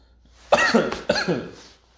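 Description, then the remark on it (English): Two harsh, raspy coughs in quick succession right after inhaling a lungful of smoke, loud, with a rough throaty quality and a short gap between them, then the sound trails off. “Coughed like right after I finished taking in all that fucking smoke.”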